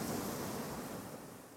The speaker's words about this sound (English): And he picks up a stone and he throws it as the waves come in. So he goes to skip it, but the wave just hits the rock and knocks it into the wall.